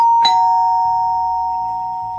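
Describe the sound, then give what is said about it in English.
A single electronic doorbell chime rings out clearly, its bright tone sustaining and slowly fading over about two seconds, with no voices present. “It was just getting interesting when Katie's mum rang the doorbell to pick her up and drive her home.”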